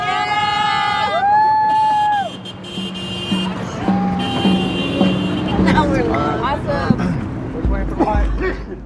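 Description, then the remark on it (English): Several car horns from a small convoy of support cars honk in overlapping blasts while people yell and cheer to encourage walkers finishing their day, with the sun low. Traffic rumbles underneath, and the shouting rises in bursts toward the end. “The sun low, a small convoy of support cars encourages us with honking and yelling as we finish out the day.”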